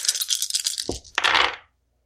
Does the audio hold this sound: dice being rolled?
yes